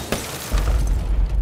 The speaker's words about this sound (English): When we were first driving up to the city in the military motorcade, we were moving along at a pretty good pace, about 50 miles an hour. We were almost into the city limits when the front vehicle smashed to a dead stop.